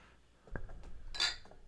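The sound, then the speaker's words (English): Glasses of beer clink together in a toast: a soft knock, then a brighter ringing clink about half a second later, fairly quiet, with no talking. “All right, let's cheers. Let's cheers.”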